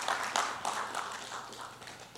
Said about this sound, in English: Can we give a hand clap to the amazing worship that we just had?